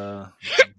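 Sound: throat clearing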